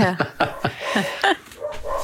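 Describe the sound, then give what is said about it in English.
A dog barks repeatedly in a quick, uneven burst of about half a dozen sharp, yappy barks, moderately loud, with a whiny edge to some of them. “a lot of barking. The dog wants to go to the polling booth with you.”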